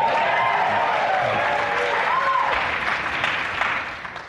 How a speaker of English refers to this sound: Let's start with some audience participation. You're going to have to raise your hand and also shout and cheer for the audience listening at home. Who likes food here?